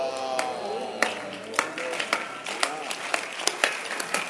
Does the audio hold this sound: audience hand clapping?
yes